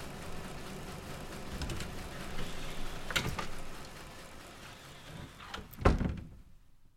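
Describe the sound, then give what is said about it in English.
A small door creaks open and then shuts with a solid thunk as someone leaves a room through it, against a low background hum. “You put back the long box on the shelf and leave the room through the small door.”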